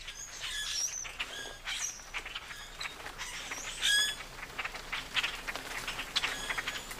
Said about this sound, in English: So we're going to profile the common grackle tonight. And let's listen to the clicks and squeaky call notes of the common grackle here.